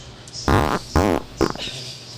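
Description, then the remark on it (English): Three short, buzzy fart noises in quick succession, the middle one with a wobbling, rising-and-falling pitch, loud with no talking over them. “Apropos fart.”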